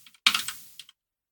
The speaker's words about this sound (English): It's on there. It's on the list. You heard me typing.